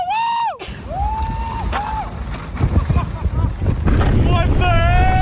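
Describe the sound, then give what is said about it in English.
A bed on saucer sleds, hooked by a rope to a truck, is towed through the snowy streets of downtown Minneapolis: a steady rumbling, scraping drag under gusty wind roar, with loud whooping, wordless voices rising and falling at the start and end. “Hey, what you're about to hear is a guy who put his bed on saucer sleds, hooked it up to a rope, and had a truck pull him through the snowy streets of downtown Minneapolis.”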